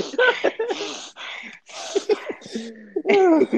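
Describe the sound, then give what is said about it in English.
A voice imitates heavy, angry breathing: a run of loud, huffing breaths and snorts in an uneven rhythm, with harsh gusts of air and some voiced grunting between them. “His face is beet red and he just stares at me, breathing heavily, like.”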